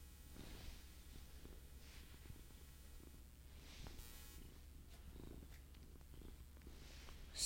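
A cat named Marley purrs right up against the microphone while trying to bite it: a steady low rumbling drone for several seconds, with a few soft rustles and brushing noises and no one speaking.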